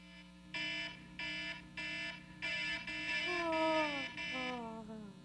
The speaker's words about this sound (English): So in my very big, comfortable bed, my alarms are going off on my phone, like every 15 minutes, sometimes even every 10 or 5 minutes. I set so many alarms. I'm not waking up to most of them.